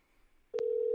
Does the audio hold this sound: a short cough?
no